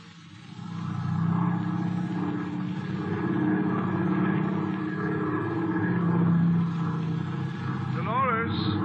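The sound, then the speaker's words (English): A propeller plane taking off, its engine roaring in a loud, steady drone for several seconds, with a brief wavering tone near the end. “Where's Mr. Slattery going in the plane?”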